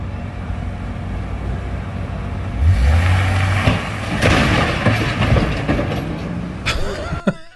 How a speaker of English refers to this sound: Man who crashed U-Haul truck near White House had Nazi flag and wanted to kidnap Biden.